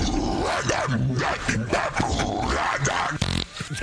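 Rough, growling dog-like vocal sounds rise and fall throughout, then a short, low, buzzy fart sound breaks through near the end before things trail off.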